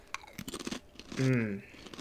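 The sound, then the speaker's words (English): A crisp chip is bitten and chewed, giving a quick run of sharp, dry crunches, then a short hummed vocal sound. “That's a good crunch.”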